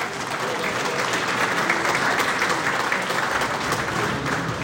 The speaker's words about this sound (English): And it's very special for us to welcome you back. Round of applause again, please, for Tom Ritchie.